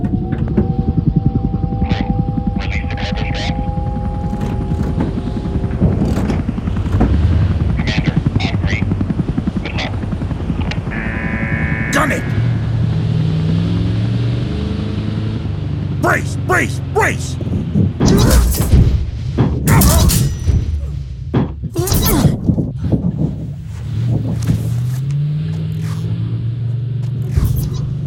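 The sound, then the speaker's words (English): A heavy truck airdropped from an aircraft slams down in a rough crash landing, with a cluster of loud, jolting metallic impacts breaking through a constant roar of aircraft engine rumble. “This is an airdrop. It's going to be a rough landing.”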